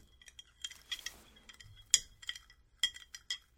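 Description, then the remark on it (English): A spoon stirs one big spoonful of Tang drink mix in a glass, with a quick run of light metallic clinks and scrapes against the sides, fairly quiet, with no talking. “Mrs. SRH is now going to add some Tang to her glass. One big spoonful there. And she's going to stir it just a little bit.”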